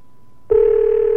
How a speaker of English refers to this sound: Come on, Alex. Pick up the phone. I know you're old, but crawl over to the phone and pick it up, will you?